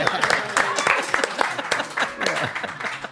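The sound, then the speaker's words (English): Audience applause for a band, a steady wash of many hands clapping at a fairly loud, even level, with scattered voices and cheering mixed in. “Let's hear it for the band.”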